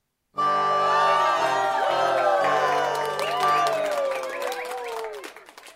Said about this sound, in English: Well, we've got our big foam fingers in the crowd cheering on the Catholics. Boo, Protestants. Hooray, Catholics.